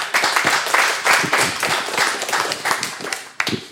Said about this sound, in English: So give yourself a pat on the back and a round of applause for everything you've done for that mission field.